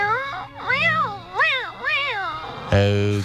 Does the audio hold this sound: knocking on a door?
no